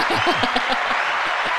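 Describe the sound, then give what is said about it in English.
A short burst of steady, dense applause fills the moment, many hands clapping at once, with faint voices and a hint of laughter mixed underneath. “where's that applause?”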